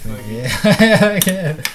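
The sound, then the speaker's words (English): Two bright, sharp clinks of glasses knocking together in a toast, with a voiced, talky sound running underneath and a brief ringing after each tap. “Cheers to that. Yeah, cheers, man. Clinky.”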